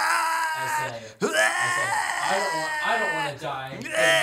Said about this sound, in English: Yell a bit.